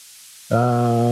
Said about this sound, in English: I hear somebody talking in the background, but that's about it. I hear like a static. It might just be me. Okay, it's coming. Might be wind. It just faded away. Oh, it's coming back occasionally.